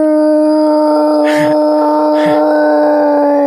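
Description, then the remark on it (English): A person imitates a Bigfoot howl, holding a long, steady, low moaning tone. Two short breathy bursts break in partway through. “Yeah, it's all just wood knocking and howling.”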